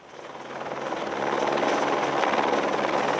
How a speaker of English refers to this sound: A short way down the trail, Shauna Kerrigan is blocking hikers from passing as a helicopter slings supplies up the trail.